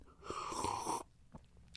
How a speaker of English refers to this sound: Pow! I just coughed out a lung and shit my pants on the mic.